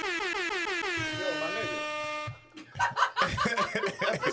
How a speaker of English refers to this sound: Nah, we don't need to hear the air horns. They do, because they on IG. They need to hear the air horns.